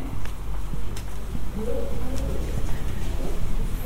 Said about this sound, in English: there are birds flying to settle on the spires above me.